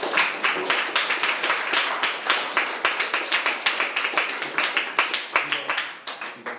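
An audience applauds steadily, many hands clapping in a dense, crackling wash that holds strong for several seconds before thinning out near the end.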